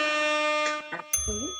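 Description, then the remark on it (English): A bright, sustained notification-bell ding rings steadily throughout, its tone holding evenly, while brief bursts of voice sound over it near the end. “so y'all, whatever he say, follow the notification bell, ding.”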